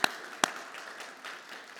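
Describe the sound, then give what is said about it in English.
Two sharp, loud hand claps ring out about half a second apart, followed by a softer, steady wash of scattered clapping from an audience at Hillside church, applauding its volunteers. No voices are heard. “Okay, let's clap again for those people.”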